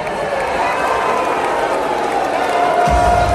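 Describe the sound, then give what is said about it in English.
A large crowd at the Texas Republican convention boos Senator John Cornyn loudly and steadily, a dense roar of many voices without a break, with a low rumble swelling near the end. “They were booing John Cornyn because he has, this is the state where the Uvalde massacre just occurred.”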